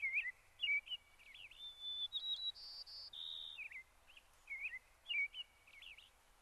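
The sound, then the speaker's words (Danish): Birds sing outdoors on a sunny, warm day in a steady string of high, bright whistles and trills, some notes held and sliding, over a faint background hum. “Solen skinner flot, og der er dejligt varmt. Hør fuglene.”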